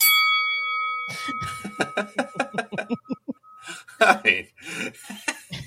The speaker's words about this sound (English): I did that really bad. Hang on a second. Let me get the right bell in there.